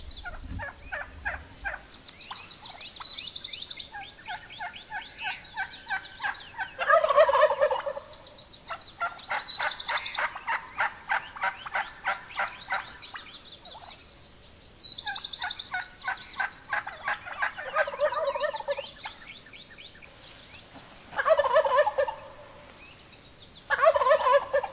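Wild turkeys gobble repeatedly in rapid, rattling bursts, several birds calling over one another, with no talking throughout.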